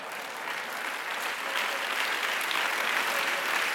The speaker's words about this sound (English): Yeah, that's okay to clap for. That's all right